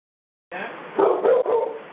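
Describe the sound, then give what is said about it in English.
After a brief silence, the speaker's dog Brother Leo lets out a quick run of about three loud barks in rapid succession, with no one talking. “My dog wants to say a word before we close out.”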